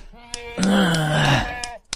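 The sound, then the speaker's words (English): A short musical jingle with sharp snap-like percussive clicks, centered on a loud, wavering sheep bleat that sustains for about a second before the tune closes with a few final clicks. “God, I have a jingle for it.”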